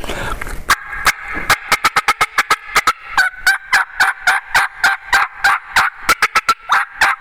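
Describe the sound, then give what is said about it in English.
Excited turkey hen cutting made on a turkey call: a fast, uneven run of sharp, loud clucks with a raspy, high yelping tone running between them, continuing for several seconds with no talking. “And that's the cutting. We know cutting is an excitement call.”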